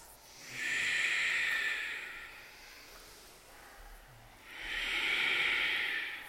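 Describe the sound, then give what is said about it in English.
Ujjayi breathing during a yoga class, in eagle pose: two long, steady, hissing breaths drawn through a constricted throat, each lasting over a second with a soft ocean-like rush, separated by a quiet pause. “Ujjayi.”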